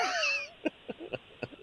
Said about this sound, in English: When the pressure's on and you feel like I just got to get a quick sip of water, it'll go down the wrong tube. And next thing you know, it's just there tickling your throat and you can't help but try to cough it out. It happens.